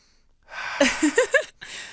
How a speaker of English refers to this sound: You guys, if you're listening and you're not watching the video right now, he's literally just sticking this little tube in his nose, sniffing it, and then making some sound effects after.